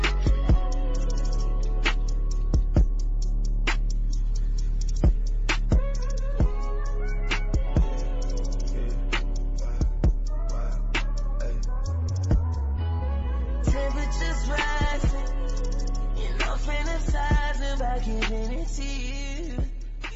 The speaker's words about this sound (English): How about a song, the Big Zill? We rush to a quick music break